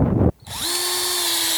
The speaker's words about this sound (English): We're gonna find a good, comfortable spot to drill the hole and to empty the buckets from, and that has a nice clean face in the bark, that there's no obvious problems or issues with the tree. I'm just gonna put the drill up to the tree.